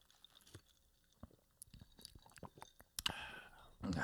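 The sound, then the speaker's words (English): Quiet wet mouth clicks and small liquid sounds, then a brief slurping sip of a tequila sunrise cocktail about three seconds in, followed by a louder breathy rush of air. “Let's have a sip. First sip, boys.”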